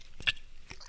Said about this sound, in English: I'm gonna spit one more time, and I'm gonna start swallowing it, gutting it.